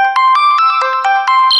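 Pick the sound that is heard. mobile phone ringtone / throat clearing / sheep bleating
mobile phone ringtone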